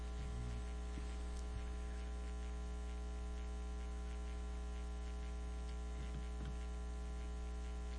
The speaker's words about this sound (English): I'm getting a little static on the headset. Maybe they could clear that up. I don't know if it's going across the air. There's a static happening. If that could be cleared.